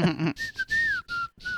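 A clear whistled melody, the intro of a song, several sustained notes gliding between pitches in short phrases with brief gaps, fairly loud, following a moment of voiced sound at the start.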